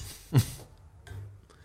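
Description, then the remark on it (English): A single brief tap of glasses meeting in a toast, more a dull knock than a bright ring, fading quickly into quiet room tone. “And gentlemen, I'll drink to that. Cheers.”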